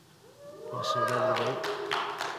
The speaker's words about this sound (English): Applaud her, not me.